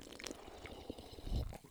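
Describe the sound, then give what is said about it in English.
A quiet sip of Vimto Fizzy carbonated mixed fruit juice, with soft liquid slurping and faint fizz, ending in a brief low gulp. No one speaks. “Oh, hold on. Another sip.”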